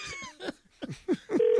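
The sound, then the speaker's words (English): A cat meow sound effect played during a prank call: several short, fairly loud meows in quick succession, each call sliding downward in pitch, ending with a brief steady whine. “Run that cat.”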